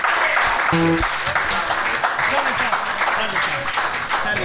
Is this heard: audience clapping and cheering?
yes